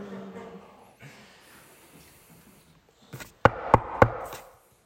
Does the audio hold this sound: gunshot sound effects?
no